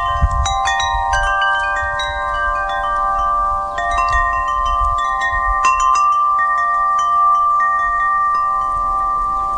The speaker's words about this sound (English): Here comes wind chimes.